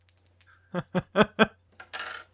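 Damage dice rolling on a table during a game: a few light ticks, then four sharp clacks in quick succession, ending in a brief scattered rattle as they settle, over a faint low hum.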